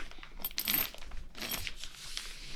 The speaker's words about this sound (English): That's not my pant zipper. I don't open it for gay pride. That's my cooler, guys, if you're wondering.